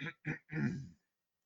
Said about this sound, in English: As she rummaged through her bag, she could hear the captain clearing his throat.